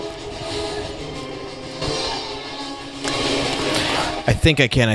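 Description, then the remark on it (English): A train rumbles steadily along the rails with a sustained horn-like tone over the noise, growing louder midway; voices break in briefly at the very end. “We need to get this train to 88 miles an hour.”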